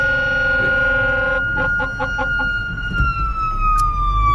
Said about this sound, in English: Fire truck going past.